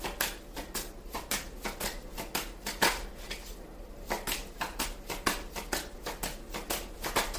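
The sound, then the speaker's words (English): A deck of cards being shuffled and handled, with a steady run of crisp, papery snaps and flicks at an uneven pace, quiet, with no talking. “Something that just came to me while I was shuffling as I was going through the cards.”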